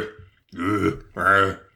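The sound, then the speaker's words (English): Two loud, guttural burp-like noises in quick succession, each a drawn-out throaty croak lasting about half a second, with no talking around them. “They're just like, dude, are you okay? You keep burping.”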